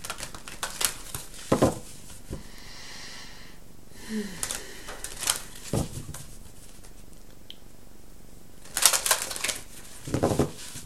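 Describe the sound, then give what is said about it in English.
A deck of cards being shuffled for a Gemini reading: quick papery riffles and flicks in short bursts with brief pauses between, fairly soft, with no one talking over them. “I'm gonna keep shuffling it.”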